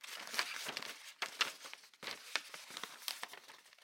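A ball of crumpled wrapping paper and torn tape rustles and crackles on the floor in a few irregular bursts, fairly quiet, with no voices.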